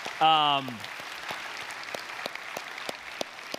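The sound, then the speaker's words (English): An audience applauds the kids after their performance with steady, dense clapping that fills the room at moderate volume. It opens with a brief voiced cheer before the clapping continues on its own. “Everybody, can we give just another round of applause for those kids?”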